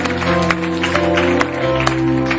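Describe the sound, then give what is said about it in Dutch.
An audience claps steadily for people who made a decision for God, a dense loud patter of many hands, with a sustained tonal hum of music or instruments holding underneath throughout. “Let's give these people that made a choice, a decision, a hand.”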